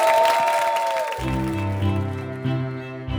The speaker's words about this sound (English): Ladies and gentlemen, big round of applause for Abbie Hoffman.